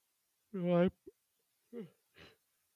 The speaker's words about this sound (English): Sorry, yawn. Because it's 11.